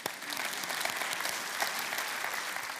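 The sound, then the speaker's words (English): A crowd applauds steadily, many hands clapping in a dense, even patter that holds at a constant level for a few seconds with no voices over it. “I think all of us, we need to clap here.”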